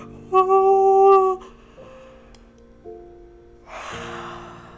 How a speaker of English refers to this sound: So a nice big yawn.